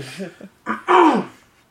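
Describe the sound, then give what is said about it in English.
A person clears their throat in two rough, gravelly bursts, the second louder and longer with a strained, voiced rasp, after a brief low vocal murmur. “Sorry for clearing my throat so much.”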